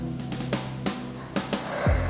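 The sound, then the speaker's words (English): A person yawns: a few short, breathy puffs of air, then a drawn-out inhale that ends in a low, falling vocal groan, with no talking. “See, I'm yawning.”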